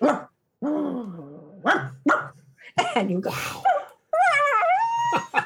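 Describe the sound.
A person mimics a dog with a string of loud barks and yips, their voice sliding up and down between short spoken words.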